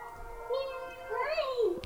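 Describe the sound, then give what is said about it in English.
A cat named Daisy meows twice in quick succession, a short call followed by a longer, rising-and-falling one, moderately loud with nobody speaking. “Daisy's meowing.”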